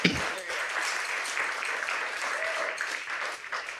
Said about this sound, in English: So let's just give Navigator a round of applause.